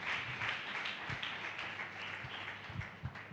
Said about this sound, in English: Clap your 2 hands for Jesus.